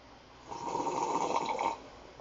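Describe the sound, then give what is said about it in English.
A single drawn-out slurping sip of hot tea, airy and hissy, swelling for about a second before cutting off, with no talking. “I gotta take a sip of my tea real quick.”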